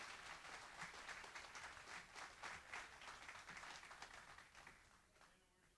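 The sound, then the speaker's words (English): A church audience applauds the band steadily for several seconds during a morning service, a dense wash of many hands clapping at once that stays strong before tapering off near the end. “our next level band a big round of applause.”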